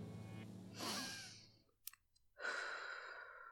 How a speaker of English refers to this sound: Are you ready? Here we go. Take 3 deep breaths.